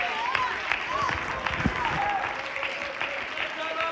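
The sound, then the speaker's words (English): An audience claps hands together, a dense, steady wash of clapping that fills the whole stretch, with scattered voices and cheers rising through it. “Oh, you ought to clap your hands one more time.”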